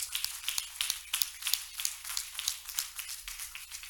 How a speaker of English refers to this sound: Clap your hands to the Lord one more time.